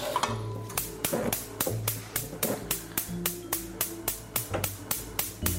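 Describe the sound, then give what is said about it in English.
A gas range igniter clicks rapidly and evenly, about three to four sharp ticks per second, as the heat is turned back on under a pan of eggs and butter, continuing steadily over a low background hum with no one talking. “That clicking you hear is me turning the heat back on, because it turned the range off for just a second while I got the butter.”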